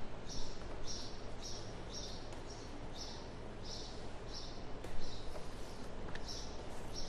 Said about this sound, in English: I can't think with the little birdies chirping.